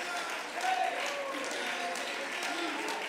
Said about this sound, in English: Oh, let's clap our hands unto the Lord tonight.